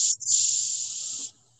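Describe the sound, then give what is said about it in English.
Cicadas buzz in a steady, shrill, hissing drone that stutters briefly near the start, holds for about a second, then cuts out, leaving only a faint low hum. “Those are cicadas.”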